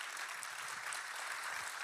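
A church audience claps for Jesus at a morning service, a dense wash of many hands blending into continuous applause at an even level, with a few faint voices mixed underneath.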